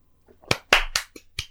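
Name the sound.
polite applause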